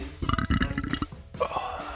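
A man lets out a long, loud, rumbling burp close to the mic, with a gurgling rasp that stretches over a second before trailing off into a brief second croak.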